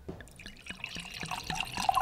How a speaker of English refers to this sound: Nice pour. There you go. Very nice. Thank you. Right out of the box, perfect pour.